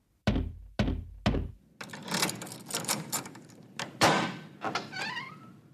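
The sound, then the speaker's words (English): Detective Hunt knocks on Percy Redwood's door at Albion House: three loud, heavy knocks in steady succession, followed by shuffling background noise and a brief high creak. “Detective Hunt drives out to Albion House and knocks on Percy Redwood's door.”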